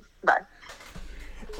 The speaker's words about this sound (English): Oh, shit. I'm coughing. I got the Rona.